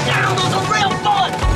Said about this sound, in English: he proceeds to like sit up, take his toy gun and start breaking out the glass.